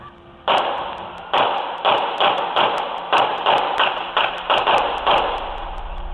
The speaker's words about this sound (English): There's two different pitches of gunfire heard. Listen. Did you hear the click, click, click? It almost sounds like a click, click, click. Just listen again.